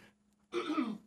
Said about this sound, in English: Excuse me while I clear my throat. Let me clear my throat.